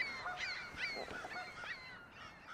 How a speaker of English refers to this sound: And then there's a goose over here, just honking by himself.